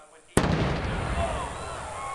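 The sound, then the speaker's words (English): A Jim Reed racing team drag racer suddenly explodes loudly in front of its crew after a brief quiet moment, followed by a sustained roar of noise with spectators shrieking and yelling in the background. “An explosion and a shriek from spectators”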